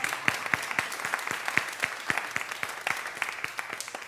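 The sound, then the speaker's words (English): An audience claps together in steady applause for the prayer chaplains, many hands producing quick, bright smacks that hold an even level throughout, with no voices rising over it. “And did we give y'all a clap yet? The prayer chaplains.”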